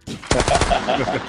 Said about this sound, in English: You gotta have the gunshots now. Boom, boom, boom, boom, boom.